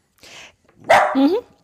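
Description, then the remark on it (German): A dog gives a soft, breathy huff followed by a loud bark that slides into a short whiny yelp, all within under two seconds. “sei mal still, wir arbeiten hier für dein Hundefutter.”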